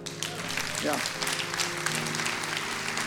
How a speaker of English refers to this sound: Yeah. It's okay to clap. It's okay to whoop.